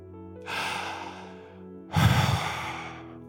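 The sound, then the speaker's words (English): Two loud breaths taken as a demonstration, with no talking: a long airy inhale, then a heavier, deeper rush of air that swells and slowly fades, like a big deliberate sigh. “Man, it's good breathing.”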